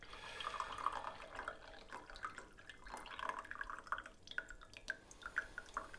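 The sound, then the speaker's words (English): Brewed tea being poured from a second brewing, a soft, uneven trickle of liquid broken by light drips and splashes, fairly quiet, with no one speaking. “I have to pour the other one too, otherwise.”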